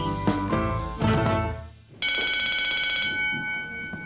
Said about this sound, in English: And that's the bell, so we'll continue our lesson after recess.